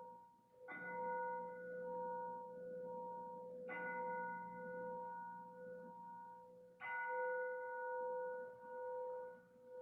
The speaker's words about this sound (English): As we now make a transition from the liturgy of the palms to the Liturgy of the Passion. As you hear the bell rung, please take some deep breaths.